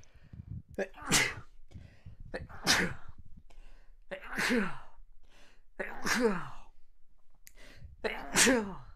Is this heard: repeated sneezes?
yes